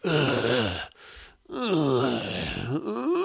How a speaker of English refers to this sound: There's a creepo using one of those things, and he's spying on this couple. And we know he's a creepo because he's doing a lot of heavy breathing, and he's grunting a lot. The amount of grunting and breathing in this movie is absurd.